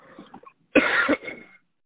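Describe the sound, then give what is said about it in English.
A harsh coughing fit from someone who just choked on water: a few sputtering coughs, then a loud burst of hacking that trails off into throat clearing. “I just choked on my water.”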